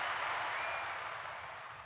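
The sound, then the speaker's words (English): An audience applauds a guest being introduced as the pastor's ex-wife, a dense, steady wash of many hands clapping together, holding fairly loud for nearly two seconds before tapering off slightly at the end, with no voices over it. “let's give a round of applause to her.”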